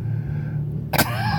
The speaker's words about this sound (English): Here we are. In a fucking car.